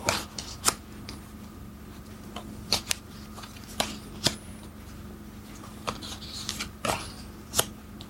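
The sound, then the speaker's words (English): Playing cards being handled and fanned out again during a card game, with no match found, with crisp irregular snaps and flicks scattered over a low steady hum, no voices. “Fan out again, but no match.”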